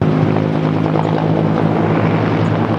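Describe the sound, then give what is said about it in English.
A helicopter deployed against the Eagle Bluff wildfire in the hills between Oliver and Okanagan Falls roars steadily, its rotor producing a constant, heavy droning hum with a rhythmic thrum underneath, loud and unbroken throughout with no voices. “100 firefighters and 6 helicopters are being deployed to the scene.”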